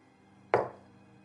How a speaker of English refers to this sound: Is that one knock for no, or that means no, two, right? Yes. He's been saying yes by giving three knocks so far.